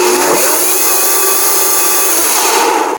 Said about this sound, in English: So I'm going to bring it to the BlendTec, and I am going to, I'm turning it on, and I'm just going to pulse it briefly here, just to, they say shake it up or you know, blend it or something.